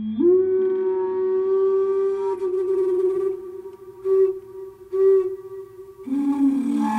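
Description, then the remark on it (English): Coyotes howl: a long, drawn-out howl holds a steady, clear pitch for several seconds, wavering slightly before sliding down near the end, with a few fainter cries rising around it. “Until the coyotes came.”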